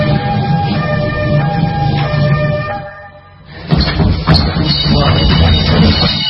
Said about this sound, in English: We're training. No. This is alarm. Just training.